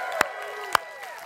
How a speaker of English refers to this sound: If you really, really believe that, give Jesus a shout and a hand clap.